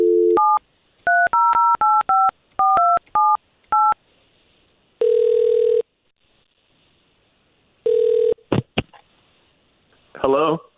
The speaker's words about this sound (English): All right, let's make that phone call then.